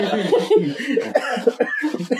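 A loud run of coughing and choking, rapid sputtering bursts one after another with gasps between them, edging toward laughter.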